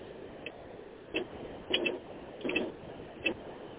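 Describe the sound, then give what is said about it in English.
Faint clicking from a ticking clock, with short sharp ticks coming at an uneven, roughly steady pace over a low background hiss. No one speaks. “Are you making the clock sound louder?”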